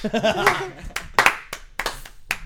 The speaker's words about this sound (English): It's like the party where you get the clap going and everyone just sat there like fucking assholes. Trying to get the clap going. I tried.